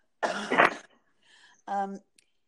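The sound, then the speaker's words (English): A single harsh cough bursts out, followed by a brief throat-clearing rasp and a short voiced hum before silence. “And I'm going to cough first.”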